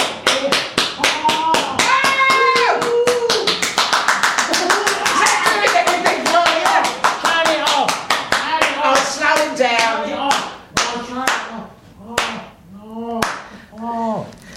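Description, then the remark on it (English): A spanking machine, switched on and turned up, slaps rapidly and repeatedly with sharp, loud smacks, then the strikes slow and space out toward the end. Voices cry out and talk over the slapping throughout. “Turn the machine on.”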